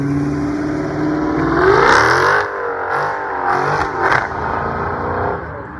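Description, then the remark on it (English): A big four-door Chrysler 300 sedan's engine revs loudly, its deep rumble climbing in pitch and swelling, then dropping back to a rough idle punctuated by a few sharp blips of throttle. “Starting us off, big four-door sedan. Here is a Chrysler 300, sounding very healthy.”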